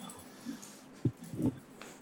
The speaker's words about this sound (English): The dog running around on mic sounds so good. It's Hamburger Head.